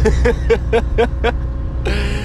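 A loud, steady low rumble inside a car being driven, with a generator running in the back: a rhythmic chugging pulse repeating several times a second before giving way to a brighter hiss.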